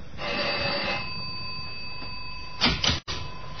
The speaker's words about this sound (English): Up in the self-service elevator on the sixth floor. Find 6G and ring the bell.